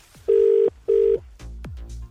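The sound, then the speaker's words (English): A telephone rings on an outgoing call back to a man: two short, steady buzzing ring tones in quick succession, loud, followed by a few faint clicks and line noise as if the call connects. “We'll ring him back.”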